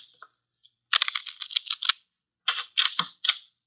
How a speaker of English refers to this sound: The cards are shuffled. I'll place them in the center of the table.